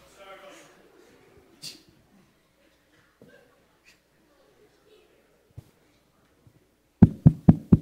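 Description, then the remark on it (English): Four sharp, loud knocks on a door land in quick, even succession at the very end, following several seconds of quiet, faint background murmur and a few soft thumps. “I'll go see who's at the door.”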